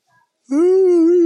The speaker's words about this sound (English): Sorry, I had to yawn.